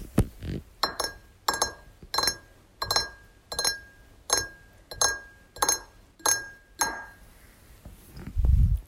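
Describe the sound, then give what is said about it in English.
Ice cubes clink against a glass of water in a kitchen about ten times in a steady, evenly spaced rhythm, each strike bright and ringing, fairly loud, followed by a soft low thump at the end. “Let me get you a lovely glass of water.”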